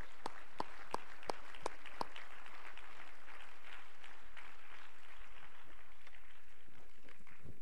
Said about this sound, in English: Thank you, Lord. Would you clap your hands to him and give him praise?